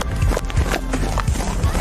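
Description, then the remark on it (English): Horse hooves beat out a quick, uneven clip-clop, several thudding strikes in a loose galloping rhythm, moderately loud, with no voices over them. “And she is really making her ass clap, which sounds a lot like a horse galloping or trotting, right?”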